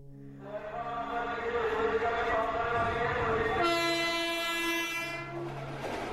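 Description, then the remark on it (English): A train en route to Bhopal rumbles past, its horn blaring in long sustained tones that shift in pitch partway through, over a steady roar of wheels on the rails. No one speaks. “One week later, the driver of a train en route to Bhopal spotted a corpse on the tracks.”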